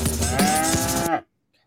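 A single loud cow moo, drawn out for about a second with a rough, resonant tone, clear before cutting off into silence.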